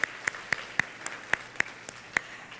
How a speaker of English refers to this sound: Welcome to all of our young people. Thank you for joining us in adult worship today. Can we clap for our children in worship today?